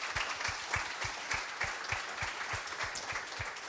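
A room full of people applauding, a dense, steady wash of clapping with sharp individual claps standing out in a quick rhythm, fairly close and sustained throughout.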